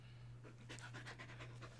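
A dog pants in quick, steady breaths, a string of short airy huffs, fairly quiet, over a constant low electrical hum.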